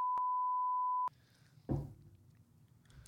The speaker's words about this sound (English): Just beep it. Just don't beep it.